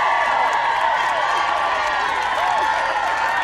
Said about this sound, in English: Listen to the cheers of that crowd. How nice is that?